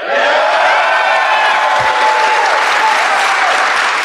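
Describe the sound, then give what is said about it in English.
Loud, sustained applause from a live audience for several seconds, a dense wash of clapping with faint cheers mixed in and no one speaking over it. “I think I saw a guy in the back not clapping.”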